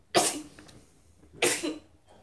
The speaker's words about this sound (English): And sneezes included.